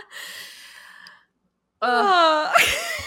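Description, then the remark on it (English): A single loud sneeze: a rising voiced 'ahh' build-up that breaks into a sharp, noisy burst, following a breathy vocal sound and a short silence. “We bless you.”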